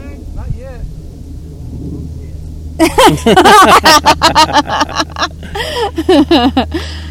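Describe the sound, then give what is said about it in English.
A pickup truck pulls up at a fishing spot, its low engine rumble steady throughout, while people start talking loudly over it partway through. “For those of you that didn't hear that, somebody came up in their truck and he just grabbed his rods and his tackle box and yelled over here,”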